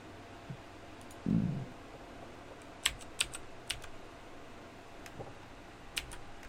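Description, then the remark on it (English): Scattered keyboard keystrokes, a few sharp clicks spaced irregularly over several seconds, with a brief low thump near the start and a quiet hum underneath. “I'm typing 69 views, guys.”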